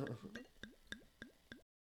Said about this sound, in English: Here, you can hear me pouring out a glass. You can hear me yours. Yeah, I didn't really hear much of a pop, but Happy New Year!